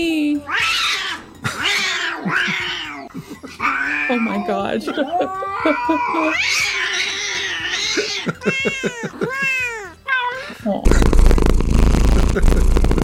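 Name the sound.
cats meowing and caterwauling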